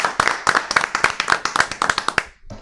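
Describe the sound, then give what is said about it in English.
A short round of applause as former NBA referee Tim Donaghy is introduced: quick, sharp hand claps in a steady, fairly loud flurry for about two seconds, then cutting off abruptly. No one speaks. “How often do you get a round of applause whenever you're introduced?”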